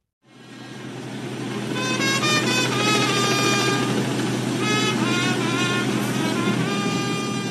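A fire truck carrying the black casket bearing Pele's body rumbles steadily through the city streets of Santos on its way to the cemetery, its deep engine drone continuous, with bright horn-like tones rising and falling above it; no one speaks.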